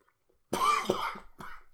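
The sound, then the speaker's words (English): A short burst of coughing from an itch in the throat: a harsh, rough cough followed by a second hacking cough and a third weaker one, loud against an otherwise quiet background with no talking. “I need to stop having an itch in my throat.”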